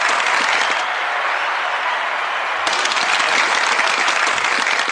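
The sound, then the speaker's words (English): Loud, steady canned game show applause sound effect from a studio audience, a dense wash of clapping that swells slightly partway through and continues without a break, with no talking over it. “I kind of hate the game show applause.”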